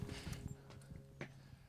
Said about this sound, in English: That's a great Foley work of the footsteps. Got that on mic.